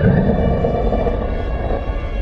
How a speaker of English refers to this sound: The Richter Beast. When this giant, nasty fiend becomes full of rage, its mighty roar shakes the very ground you stand on.